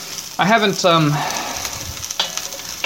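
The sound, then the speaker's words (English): Broccoli sizzles steadily in hot oil in a big crock pot, a continuous crackling hiss with scattered pops. A brief voiced sound rises over it early on, then the frying carries on alone. “That sizzling oil you can hear is the broccoli oil.”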